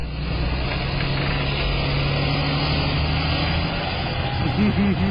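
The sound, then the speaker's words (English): A heavy school bus engine rumbles steadily as the bus drives away, a low idling drone that continues throughout, with a faint voice briefly audible near the end. “So it's this little kid going in his door, and there's a doorbell cam, and he flips off the bus as it drives away.”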